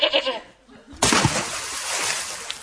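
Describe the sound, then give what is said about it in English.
A short, wavering bleat from a little Tuscan goat tied to a boulder hurled down a well, then a sudden loud splash and ongoing watery sloshing follow right after. “Poor little Tuscany goat who was tied to the boulder had flown down the well.”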